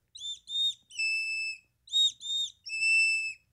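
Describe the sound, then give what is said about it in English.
A person blows a bird call whistle, the call used to bring birds to the feeder when food is put out: two short notes and a longer held note, then the same three-note phrase again, loud and steady with no talking. “But I go outside and I call my birds to come to the feeder when I put food out.”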